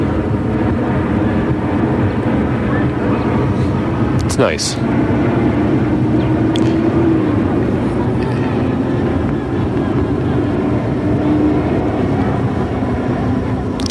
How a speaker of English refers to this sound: There's a plane overhead. I don't know if you can hear that. Anyway, yeah, so I'm at this park.